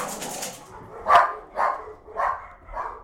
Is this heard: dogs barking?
yes